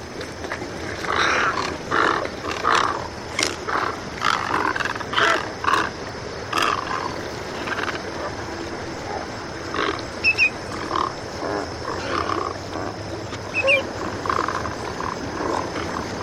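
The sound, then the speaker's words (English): Large birds fighting beak to beak at a glacial pond on the Connecticut shore, letting out harsh, strangled-sounding angry calls in repeated rough bursts, loud and raspy, with no talking throughout. “The angry calls sound like someone's getting strangled.”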